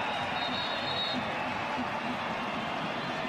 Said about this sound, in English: And the crowd on their feet making noise.